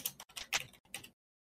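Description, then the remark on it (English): A quick run of soft, crisp clicks from typing on a computer keyboard, several irregular keystrokes over about a second, fairly quiet, with no voices. “We can speak in gibberish while he's typing.”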